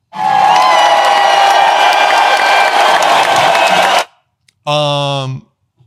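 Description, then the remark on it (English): A loud crowd claps and cheers for about four seconds, a dense wash of applause and shouting that stops abruptly, followed by a short burst of a single sustained voice or tone. “Man, clap.”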